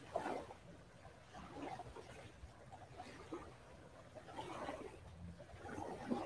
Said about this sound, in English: The waves are relaxing.